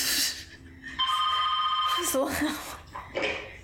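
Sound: house telephone ringing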